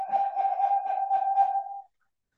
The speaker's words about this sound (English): Okay. That's your buzzer. Time's up.